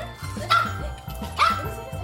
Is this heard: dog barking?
yes